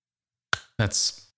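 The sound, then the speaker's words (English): A person imitates a high five with their mouth: a sharp popping burst, then a voiced syllable trailing into a hissy, breathy rush. Short, fairly loud, with no other sounds. “You made a high five self with your mouth and you could just clap your hands together.”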